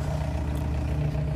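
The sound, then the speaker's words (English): A car engine rumbles with a steady, low hum, holding an even loudness throughout the short moment with no clear swell or fade. No one speaks. “Hold on, there's a car.”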